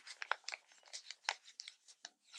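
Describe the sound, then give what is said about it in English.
Paper crinkles and rustles as it's handled and bent, a quiet, irregular run of dry crackles and soft crunches, with no voices over it. “Now, if I make, today paper is very useful to us.”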